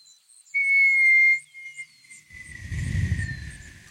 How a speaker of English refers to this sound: You get near the edge of the city and you hear like a whistle.